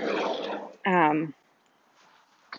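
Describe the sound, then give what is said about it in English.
A dog lets out a single short, whiny yelp after a burst of rustling noise while being taken outside, then things fall quiet apart from a faint click near the end. “And then, sorry, I'm multitasking at the moment, taking a dog outside.”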